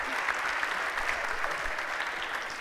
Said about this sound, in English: Thank you all so much. Can we give them a huge round of applause and lots of love?